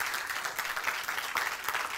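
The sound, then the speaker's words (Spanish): An audience breaks into steady, sustained applause for the Lord during a sermon, many hands clapping densely together with no pause and no voices standing out. “Da un aplauso al Señor, hermano.”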